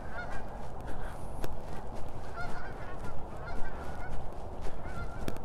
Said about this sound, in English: I swear there had to be a couple hundred, and if not more. I mean, it was, you've heard of a flock of geese? Well, this is like an armada of geese. And they are definitely, definitely migrating.